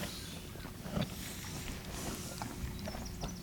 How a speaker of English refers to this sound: He's one of our Poitous. As you can see, he is a lot bigger than the other donkeys. Very hairy. He stands at 14.2 hands high. And he's a gentle giant. And as you can hear, he's busily munching his straw.